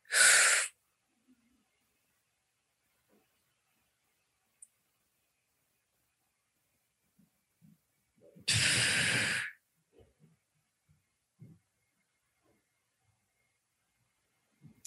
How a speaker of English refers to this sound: It's taking a quick 4 second breath in, holding it for 10 seconds, and then breathing out for 8 to 10. So I'll just illustrate.